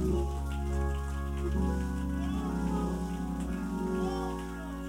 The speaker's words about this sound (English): Come on, clap your hands, everybody, and give the Lord a praise.